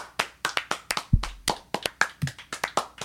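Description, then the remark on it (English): Three people clap rapidly and unevenly, their sharp overlapping claps blending into a busy, crowd-like applause for about three seconds, with no talking. “I want you to go listen to the show at this point and go, wow, three people actually can sound like a lot more.”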